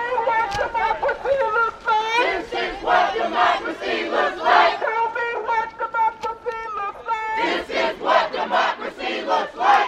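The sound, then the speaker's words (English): Hundreds of students yell and chant together as they pour out of the Black Culture Center onto the street and march, in Columbia, Missouri; many voices overlap in loud, sustained, rhythmic shouting that swells and dips throughout. “The students, hundreds of them, they poured out of the Black Culture Center and onto the street.”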